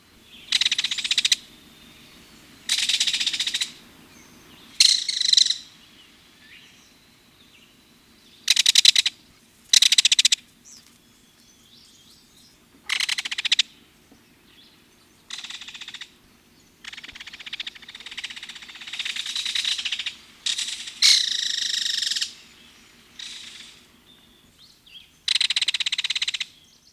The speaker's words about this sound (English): Once learned, the belted kingfisher rattle is pretty distinctive. At first, they may sound similar to a woodpecker or other rattling call, but there is a unique mix of mechanical sounds and more musical ones.